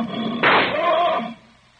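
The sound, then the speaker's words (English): A sudden loud burst as a lion is shot point-blank with a rifle erupts into a harsh, throaty lion roar lasting about a second, forceful, then cuts away to quiet background rumble. “The lion is dead.”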